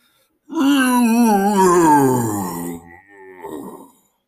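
A long, eerie groaning moan that starts loud and slowly slides downward in pitch, trailing off, then a shorter, quieter groan follows after a brief pause.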